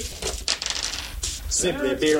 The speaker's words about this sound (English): Jared rolled 3 dice. Got an irresistible.